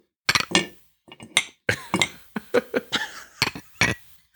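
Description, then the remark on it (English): Glasses clink together in a toast, a quick irregular flurry of about a dozen bright, ringing taps, fairly loud, with no talking over them. “Smile. We can. 1, 2, 3. Cheers.”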